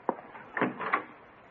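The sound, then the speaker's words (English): A front door opens: a sharp latch click, then a couple of softer wooden knocks and rattles over about a second, with no voices. “All right, I'll get the door.”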